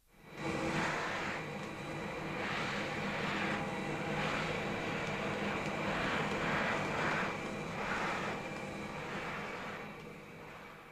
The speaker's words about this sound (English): Well, switch the thing on. Go on, don't be afraid, it's only a vacuum cleaner. It won't bite you.